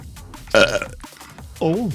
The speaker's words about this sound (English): Sorry, I was just trying to stop my dog from crying.